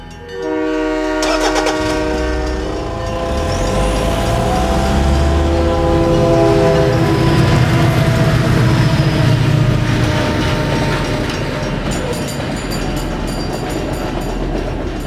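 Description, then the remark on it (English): A train horn blares loudly with sustained harmonic tones while the heavy rumble of an approaching train builds, followed by rattling, clattering wheels and a steady roar as the train rolls by. “They stopped the car on the railroad tracks with the train coming.”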